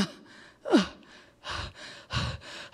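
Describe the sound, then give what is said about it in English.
A voice imitates heavy panting: several loud, breathy gasps and exhales in an uneven rhythm, with no words spoken. “And he said, everything God made is panting.”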